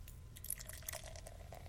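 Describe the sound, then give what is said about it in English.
Honey Kolsch beer, light golden with a white foamy head of tiny bubbles, is poured into a glass: a soft, steady fizzing and crackling of foam with scattered tiny pops, fairly quiet, with no one talking. “Honey Kolsch, here we go. Excuse me while I pop my top. Ah, this top! Nice. And the pour.”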